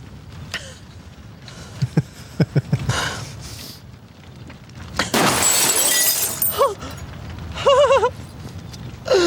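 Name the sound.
gunfire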